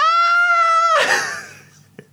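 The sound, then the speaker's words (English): A loud, high-pitched scream holds steady for about a second, then breaks into a rough, noisy burst of yelling that fades away, ending with a brief click. “Pump your hands into the air and let me hear you scream.”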